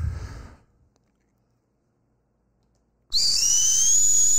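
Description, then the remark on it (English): A brief muffled rustle gives way to silence, then a loud, sustained high-pitched whistle from a shoe starts abruptly and holds steady, piercing, with a faint rising tone inside it. “The whistle shoe.”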